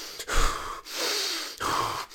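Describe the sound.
A voice imitates an old man's heavy, rasping breathing in an elevator: loud, airy in-and-out breaths in three long pushes, separated by brief pauses, with no words spoken.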